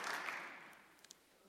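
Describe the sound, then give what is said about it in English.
A brief wash of audience applause, soft, fades out within the first half second, leaving quiet and a couple of lone claps. “And so the question is, oh, y'all can clap.”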